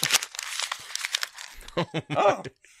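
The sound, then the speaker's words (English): Paper rips and crinkles in a quick burst of rough, scratchy tearing as the envelope of a mailed letter is torn open, followed by a short stretch of someone talking. “Someone just mailed me a letter.”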